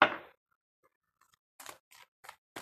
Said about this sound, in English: So these cards are not coming out. Let me try shuffling a little bit more. Hold on.